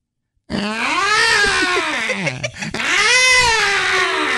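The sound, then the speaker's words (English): A person imitates a crying 2-year-old toddler with two long, wavering wails separated by a brief catch of breath, loud with no other talking. “Well, at 8:25, cry like a baby for them little baby ticks.”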